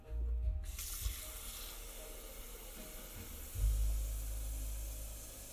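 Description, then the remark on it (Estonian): Tap water runs steadily into the water tank of a coffee machine that has run out of water, with a broad, rushing hiss, briefly changing pitch as the stream shifts, with a low rumble swelling near the end. No one speaks. “Kohvimasin on vesi otsa saanud. Seda tuleb juurde panna.”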